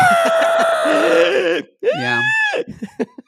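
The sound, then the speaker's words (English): A voice imitates the shrill, prehistoric-sounding bird scream a woman makes as she starts to fall: a long warbling screech that falls in pitch, then a second arching shriek, ending in a few short breathy bursts. Loud. “But she was doing it, and then when she starts to fall, she does that prehistoric bird scream.”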